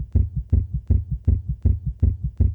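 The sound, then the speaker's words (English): A rapid simulated heartbeat at about 160 beats per minute, as a human heart might beat during exercise: seven or so deep lub-dub thumps in a steady, quick rhythm, with nothing else in the background. “Here is what 160 heartbeats per minute sounds like. This is what a human's heart might be doing during exercise.”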